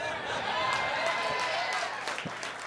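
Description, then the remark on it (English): A crowd applauds steadily, a dense wash of many hands clapping at an even level with a murmur of voices mixed in, sustained throughout without a clear start or finish. “You're applauding violence.”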